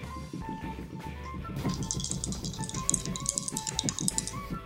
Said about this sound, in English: Okay. Roll the dice for it.